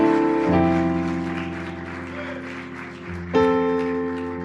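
An audience at a church service claps and applauds God steadily throughout while sustained organ or keyboard chords ring underneath, the chords shifting at two points.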